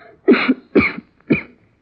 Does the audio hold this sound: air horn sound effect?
no